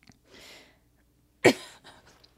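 A breathy exhale, then one sharp, loud cough, trailing into a few softer, huffing bursts of stifled laughter mixed with coughing.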